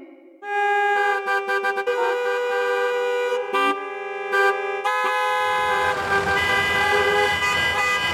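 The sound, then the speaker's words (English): Several car horns honk repeatedly and overlap, some sustained and others in short bursts, from cars stuck motionless in a highway traffic jam, over a rumbling traffic background that grows busier and noisier toward the end. “Car after car stuck on the highway, motionless like a parking lot.”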